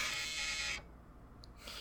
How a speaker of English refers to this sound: Oh, it's still going. What was that? Chainsaw noises.